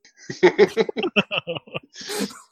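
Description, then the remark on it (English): A sneeze: a quick run of breathy, gasping build-up sounds gives way to a loud, hissing burst at the end. “Bless you, space pirate.”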